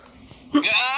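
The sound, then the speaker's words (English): After a near-silent start, a sudden harsh cough bursts out and runs straight into a strained, voiced sound, as if someone is trying to talk through the cough. It stays loud to the end. “I was half like trying to like speak through my cough.”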